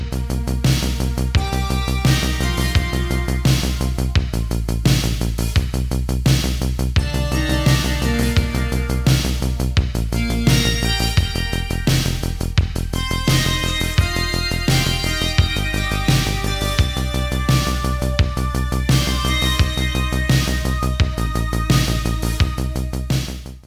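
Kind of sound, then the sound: sound effect, intro music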